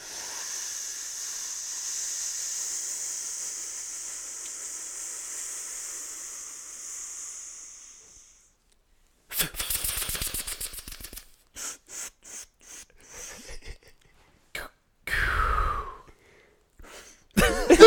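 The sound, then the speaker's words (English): A person imitates a long, steady inhale on a blunt, a breathy hiss lasting several seconds, then breaks into a series of harsh, uneven coughs. “That's when I go overboard and coughing.”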